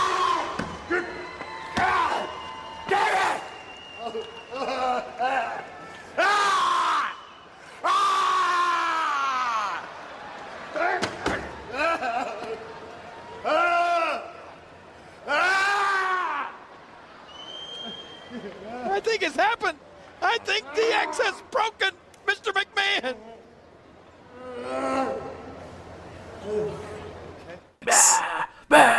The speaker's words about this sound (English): Where he goes from screaming maniacally to just like sobbing. Like, that 06 DX run was terrible, but that was a fantastic moment.